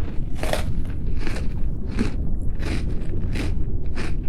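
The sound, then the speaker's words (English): Crunchy sea salad of mixed seaweeds in a briny dressing being eaten, with six loud, crisp bites spaced about two-thirds of a second apart over a steady low rumble, each crunch bright and crackly. “Now let's share this most excellent salad. Dig in.”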